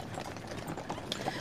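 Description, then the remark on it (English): Horse hooves clip-clop in a steady, uneven patter as a horse-drawn coach makes its way down a street, mixed with a continuous rumbling street background. “and the people who don't move fast enough, young, old, male, female, doesn't matter, they're just getting shoved out of the way, roughly, as this coach is making its way down the street.”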